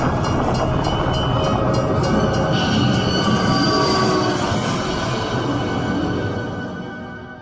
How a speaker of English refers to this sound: Now he's about to pull into the train tracks while the train's coming and just get blasted by the train.